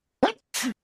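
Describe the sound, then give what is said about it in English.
A single sneeze: a sharp intake-like burst followed by a breathy, hissing blast, short and fairly loud with no talking over it. “Bless you.”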